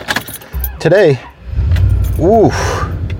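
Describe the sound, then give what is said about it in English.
An old truck engine cranks slowly on a cold morning, Monday, November 2nd, 2020, with two rising-and-falling starter whines over a low, chugging rumble that keeps turning over. The sound is loud, with no one talking. “Today the old truck is starting a little slowly.”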